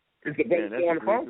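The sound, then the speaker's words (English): A short burst of garbled voice echoing back from a phone, lasting about a second at moderate volume. “Whose phone is that's making the repeat?”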